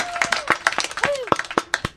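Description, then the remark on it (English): Brief, uneven applause from a small group, sharp claps landing at an irregular pace, with a couple of rising-and-falling vocal whoops mixed in. “Applause, everybody.”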